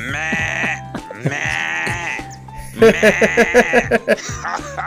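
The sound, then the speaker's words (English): A person imitates a goat, giving two drawn-out, quavering bleats followed by a rapid, stuttering run of short bleating pulses that sound almost like laughter, loud. “And then after 2 years, you came back as British Goat.”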